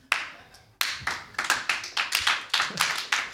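slow clap

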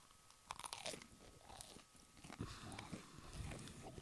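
someone chewing food

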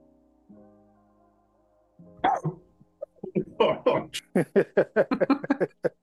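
coughing fit

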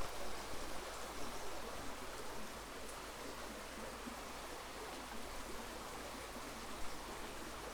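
river water flowing

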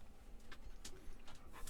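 dog panting and whimpering

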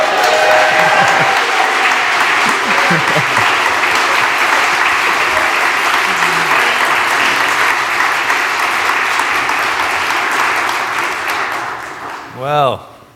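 audience applauding and cheering

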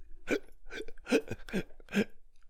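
hiccups

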